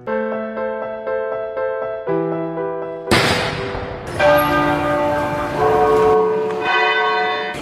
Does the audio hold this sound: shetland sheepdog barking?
no